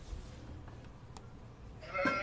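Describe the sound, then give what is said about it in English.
A single short, clear sheep bleat rises at the end after a couple of seconds of low, rumbling background noise. No one speaks. “Those poor sheepies.”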